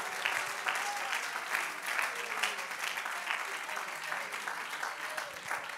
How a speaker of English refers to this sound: If you receive it right now, come on, let's take a moment, clap our hands unto the Lord. Let's lift him up, lift him up.